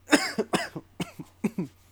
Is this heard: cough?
yes